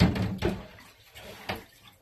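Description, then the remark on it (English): Water runs steadily from a tap while dishes are washed, with a couple of sharper clinks and clatters standing out above the hiss; no one speaks. “No, you're doing dishes.”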